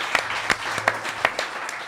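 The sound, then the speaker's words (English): A studio audience at a weekend camping event applauds the organizers steadily, a dense wash of many hands clapping with a few sharper individual claps standing out, no voices heard over it. “Let's give this round of applause to Buffalo Wobbs and Catfish and Big Dan and the people who have put this together.”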